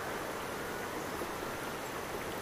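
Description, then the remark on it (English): Distant flowing water makes a steady, even hiss and rush that never changes in level, with no voices or other distinct sounds. “The water in the distance.”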